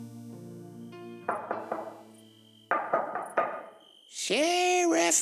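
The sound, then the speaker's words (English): A long metal device with a handle on one end and a clamp on the other bangs sharply against the window of a patrol car in two quick bursts of three or four hits, each ringing briefly over a steady low hum, before a loud, strained voice cries out. “banging in the window of my patrol car with a long metal device.”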